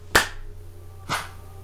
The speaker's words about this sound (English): Also, let's clap. Oh, sure, let's clap. You ready? 3, 2, 1.